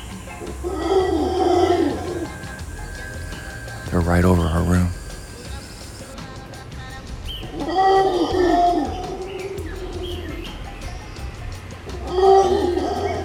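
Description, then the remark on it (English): Howler monkeys call in deep, rolling roars that rise and fall in several loud bursts, with a person briefly speaking between the calls. “These are howler monkeys.”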